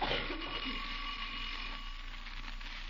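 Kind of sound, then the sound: signal or alarm, doorbell ringing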